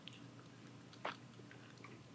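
A single quick sip of a paloma cocktail made with tequila, lime and salt, from a cocktail glass, fairly soft, with faint mouth and lip sounds around it and no one talking.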